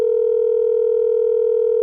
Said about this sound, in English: You can't just leave him a message. He has a recording that has like a dial tone. See? Your call did not go through. That's a recording.